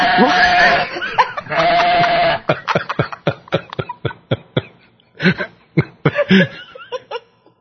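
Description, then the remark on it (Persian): Two long, wavering sheep bleats, followed by a quick run of short, choppy bleating bursts with brief gaps between them, with no talking. “الان گوسفندا رو اینجایی که بردی چرا میکنن راحت یا نه؟”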